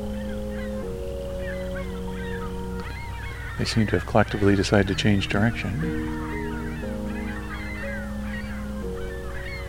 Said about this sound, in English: Or maybe there's a big flock of gulls coming. A lot of ringbill calls. Ringbill gull calls.